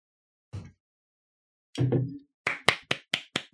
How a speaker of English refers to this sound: It's about the only clap I'm going to get.